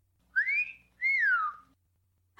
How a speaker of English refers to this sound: Do you think it's nice to whistle at a lady in a graveyard?